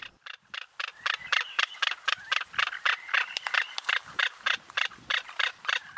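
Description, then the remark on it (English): Rapid, steady clattering from a frigatebird breeding colony, with dense rattling bill snaps repeating several times a second and harsh squawky calls blended in. The din holds fairly loud throughout, with no talking. “They'll be all together in their colony, making squawking calls and snapping their bills, really making a ruckus.”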